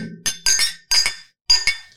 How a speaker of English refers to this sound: So he's rustling around. All you can hear is like the clinking of like jars and shit.